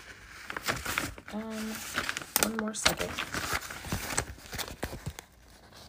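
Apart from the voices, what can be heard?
shuffling papers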